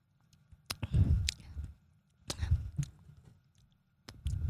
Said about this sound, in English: I'm gonna take a sip of it.